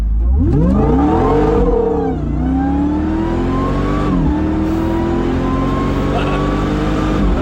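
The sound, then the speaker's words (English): A 4x4 engine roars under heavy throttle, about 80% throttle, its pitch climbing steadily, dipping briefly at a couple of gear changes, then rising again, loud throughout. “Up here comes the car.”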